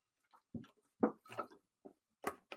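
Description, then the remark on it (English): Someone drinking water: a handful of irregular, soft gulping and sipping sounds with brief wet clicks between swallows, no talking. “Excuse me while I drink my water.”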